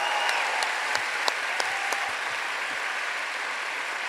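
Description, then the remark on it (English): An audience in Los Angeles applauds for the host's friend in a steady, dense wash of clapping for about four seconds. A few sharper individual claps stand out early on, and no one speaks over it. “So I have a couple of minutes to end with, but first, can we have a round of applause for our friend?”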